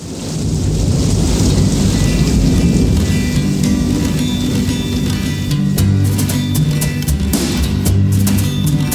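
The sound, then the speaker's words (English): A steady, loud downpour of rain with heavy rumbling thunder rolling underneath, building continuously throughout with no voices, a storm effect opening a hit song before the music begins. “Oh, raindrops, so many raindrops, it feels like raindrops falling from my eyes, falling from my eyes.”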